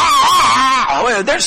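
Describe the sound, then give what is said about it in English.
A voice imitates a screeching beginner violin with one loud, strained, high-pitched tone that wavers and bends unsteadily, then breaks into a couple of scratchy squeaks at the end. “but I would imagine that the violin is about the last instrument any parent will want their child bringing into the home to learn to play. You've heard it screech.”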